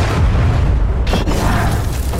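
A loud, deep explosion rumbles throughout, with a sharp crackling burst of debris about a second in before the low roar carries on steadily. No one speaks. The blast is at Bill and Rita's new house in the town of Fairfax, in the early hours of March 10, 1923.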